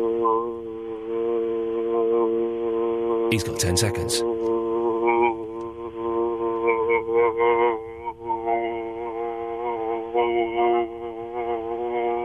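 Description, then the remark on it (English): A man hums one steady, unbroken low drone in a timed attempt lasting about 22 seconds, holding the same pitch throughout. There is a short noisy burst near the start, and another voice talks over the hum. “He won't make 15 seconds with a drone like that.”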